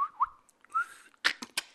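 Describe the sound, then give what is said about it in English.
A person whistles a short imitation of an owl's call: a couple of brief, fairly quiet tonal hoots, followed by a few sharp breathy clicks. No one speaks. “They click some whistles, so he knows about it.”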